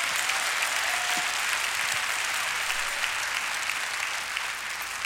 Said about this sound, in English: If you intend to go to heaven, clap your hands one more time.